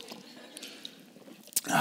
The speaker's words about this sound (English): It's a good place for a drink of water.